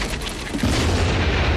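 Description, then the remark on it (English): A pipe bomb explodes, erupting into a heavy, rumbling roar of dirt and debris near a semi truck that sustains through the end, dense with deep low-end weight and no voices. “Bert drops a pipe bomb and the graboids bug out.”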